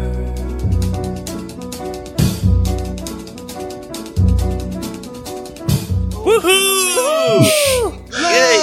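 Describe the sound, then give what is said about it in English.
A voice imitates the noise of a Lovecraft creature, a howl or wail in loud, looping swoops that rise and fall in pitch, following a stretch of steady, pulsing music. “I was trying to think of what a Lovecraft creature would make, noise would make. It's kind of a howl or a wail.”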